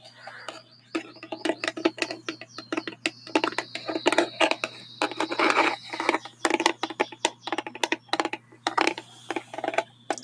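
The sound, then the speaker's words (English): Fast, irregular tapping on a dry erase marker: a dense stream of sharp plastic clicks with no talking, over a steady low hum and a thin high chirping of loud birds for a few seconds. “I'm gonna tap on it, kind of fast.”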